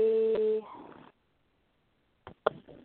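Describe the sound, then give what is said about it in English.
A phone gives a short, steady electronic tone, followed by a soft rustle, then a couple of sharp clicks and knocks as it is handled and moved out of the way. “I'll move the phone out of the way.”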